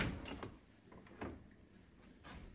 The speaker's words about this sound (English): When I realized that, I the dishwasher had just got done the other day, so I grabbed my phone. I said, honey, open the dishwasher, and this is what happened.